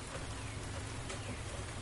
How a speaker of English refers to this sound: This spring rain isn't making me horny, it's making me contemplative.